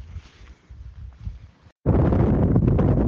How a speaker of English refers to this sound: Yeah, it certainly was a bit windy there.